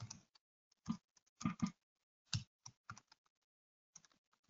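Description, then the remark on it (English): Someone types on a computer keyboard in short, irregular bursts of clacking keystrokes separated by brief pauses, with no talking. “People are making fun of my typing ability.”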